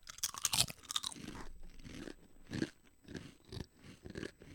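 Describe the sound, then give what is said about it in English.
Loud crunching of spicy Cajun-flavored potato chips: a dense burst of sharp crackles as they're bitten, followed by a steady rhythm of softer chewing crunches, with no talking. “Think about crunch.”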